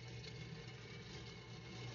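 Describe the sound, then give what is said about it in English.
Popcorn sizzles in a popcorn machine at home: a steady, soft hiss layered over a low, continuous motor hum, unbroken for the whole stretch with no voices. “Listen to the sizzle.”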